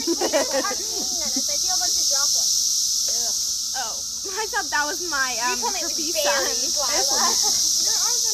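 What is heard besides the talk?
cicadas buzzing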